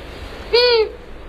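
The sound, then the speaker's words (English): A single call of a medium-sized owl with a gray-brown body, rust-colored facial disc, white patch beneath the bill and long ear tufts: a short, clear, slightly nasal hoot lasting about a quarter second, alone over faint background noise. “Our mystery bird is a medium-sized raptor with a gray-brown body, a rust-colored facial disc, a white patch beneath the bill, and long ear tufts.”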